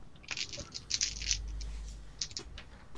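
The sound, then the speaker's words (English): A handful of dice clatter and rattle together across a hard surface, a dense burst of sharp clicks over a low rolling rumble, then a few last scattered taps as they settle. No voices. “Ah, succeeding is so easy when you've got, like, a bajillion dice.”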